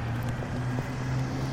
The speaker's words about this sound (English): Oh no, that's my bus! Oh, wait!